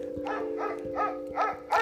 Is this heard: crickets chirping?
no